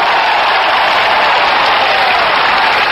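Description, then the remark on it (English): A large crowd applauds after the 'I have a dream' speech at the Lincoln Memorial, in a steady, dense roar of clapping that stays loud and even throughout, with no speech on top of it. “You hear that applause.”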